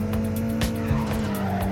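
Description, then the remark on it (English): A video game car drifts, its engine droning steadily while tires squeal in a continuous, loud skid, with brief bursts of higher screeching layered on top. “Oh, nice drift.”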